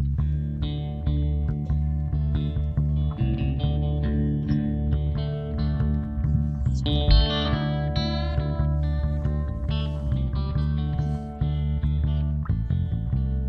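A moody instrumental passage with understated guitar and a warm, steady bass line, sustained tones holding at an even, moderate level with no singing or talking.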